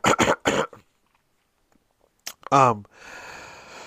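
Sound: throat clearing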